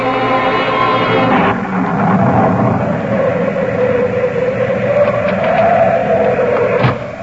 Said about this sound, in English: I was so frightened the lights went out. That's just the storm. It'll be all right.